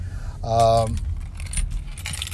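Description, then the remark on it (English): A bunch of keys jangles in a few quick metallic clinks as they are taken out to open a store, with a strong ringing burst near the start, over a low rumbling background like an idling vehicle. “So the keys are out, ladies and gentlemen. I got to open the store.”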